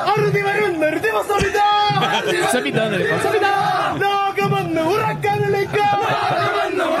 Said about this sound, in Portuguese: Olha o grito da Argentina. Olha a Argentina.